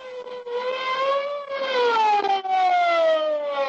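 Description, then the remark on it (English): A big police car's siren wails loudly and continuously, its pitch slowly rising and falling in long sweeps, as the car comes to a halt at a barricade around a club building, with no voices over it. “The big police car came to a halt at the edge of a live barricade thrown around the Skylight Club building.”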